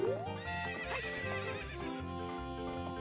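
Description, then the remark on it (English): A video-game horse lets out a loud, rising whinny near the start, followed by steady rhythmic hoofbeats and a sustained, tonal background running throughout the short clip. “Can we just steal the horse?”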